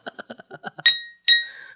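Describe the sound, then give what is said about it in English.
A quick run of seven light taps on a Bellini glass, then two bright ringing clinks that chime clearly, the last one lingering as it fades. “But I am dabbing on a Bellini glass.”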